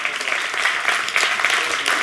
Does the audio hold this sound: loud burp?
no